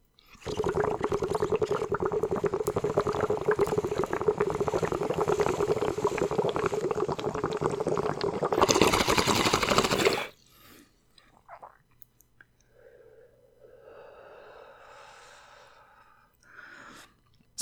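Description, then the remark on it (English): Someone takes a smoking hit: steady bubbling of water for about eight seconds, ending in a brief harsher rushing pull, then quiet with a soft exhale and faint breathy sounds. “Super smooth hit.”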